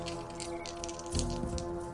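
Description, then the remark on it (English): Dice rattle and tumble briefly across a surface midway through during a tabletop role-playing game, landing on snake eyes: a short burst of clicking over a steady low background hum, fairly quiet. “Ooh, snake eyes.”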